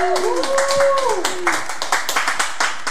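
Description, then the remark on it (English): A crowd breaks into steady applause for the Dream Team, dense clapping throughout, with a few rising whoops and cheers early on that fade as the clapping thins toward the end. “So if you could just give them a quick round of applause.”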